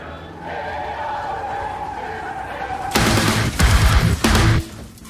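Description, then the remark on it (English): Brakes screech in a long, steady whine for a few seconds, then give way to several loud, harsh bursts of skidding noise, with no one talking, opening the first song of a band's album. “I love the sort of screeching of the brakes and the way the guitar and everything comes in there and then kind of stops and you get a little bit more, and that kicks off the album.”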